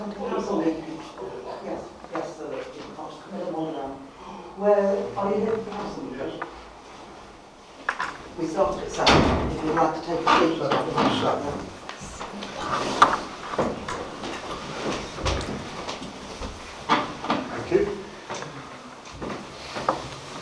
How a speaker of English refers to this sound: We have the doorbell ringing, the clerk is just going to answer the door.